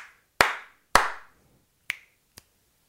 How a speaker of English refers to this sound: It gets three claps and two snaps.